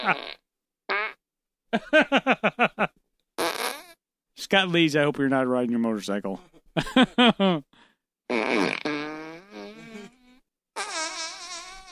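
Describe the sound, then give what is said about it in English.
A run of loud, buzzy fart noises from a corpse, recorded with a microphone in a morgue, in short sputtering bursts of varying length, with a man briefly speaking between them. “Those are actual corpse farts, my friend.”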